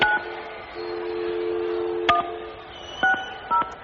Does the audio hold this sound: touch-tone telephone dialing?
yes